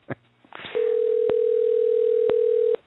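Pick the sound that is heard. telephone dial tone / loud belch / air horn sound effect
telephone dial tone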